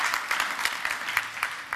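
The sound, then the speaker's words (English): A church audience claps for the decor team in a steady, dense burst of applause, many hands overlapping into a continuous patter with a few sharper claps standing out, at moderate volume throughout. “So if everyone just give our decor team and everyone who makes this possible a round of applause.”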